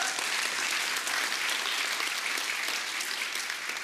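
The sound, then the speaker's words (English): A church audience claps steadily for about four seconds, a dense, even patter of many hands with no pauses and no voices standing out. “Just start clapping, okay? Right now, go for it.”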